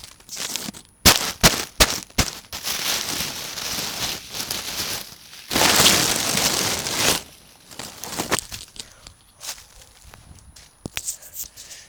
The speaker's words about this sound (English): Listen to me crunch leaves.